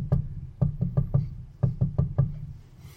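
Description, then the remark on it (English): Sharp, fairly loud knocks on wood, made as a sound effect: a single rap, then two quick groups of four evenly spaced knocks, with no talking. “the deadly prophecy warns he will knock four times”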